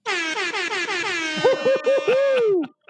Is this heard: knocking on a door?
no